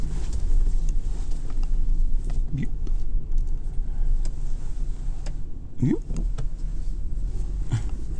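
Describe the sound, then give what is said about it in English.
Heavy trucks maneuvering in a parking lot: a steady low engine rumble runs throughout, with a few short rising squeals and faint ticking sounds over it. “We're playing musical trucks here in the parking lot.”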